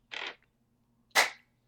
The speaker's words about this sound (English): Can I have clap? Really? Clap number one. Clap number two.